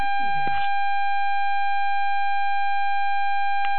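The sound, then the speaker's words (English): A bell rings steadily over a caller's phone line from Ohio, a continuous, bright, metallic tone that holds unbroken for several seconds, with a brief burst of muffled noise at the start and again at the end. “And it sounds like Ohio got a bell going off or something like that.”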